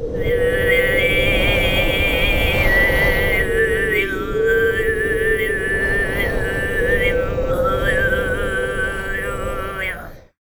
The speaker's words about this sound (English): Hume is a specific style, but it can also mean Tuvan throat singing more generally. The style involves the drone of a fundamental frequency plus overtones. It's often used to imitate the wind.